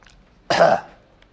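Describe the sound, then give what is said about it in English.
A single harsh cough or throat clear from a speaker who is losing their voice bursts out, loud and raspy, lasting about a third of a second before fading into near silence. No one speaks. “So I'm going to start coughing.”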